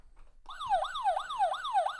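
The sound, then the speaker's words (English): A loud electronic alarm siren, sounded as a 'backup alarm' about the quarterback situation in a Bears–Giants game, starts abruptly and repeatedly sweeps in fast, rising-then-falling whoops, about four cycles over two seconds, with no talking. “Speaking of quarterback conundrums in this game, sound the damn backup alarm.”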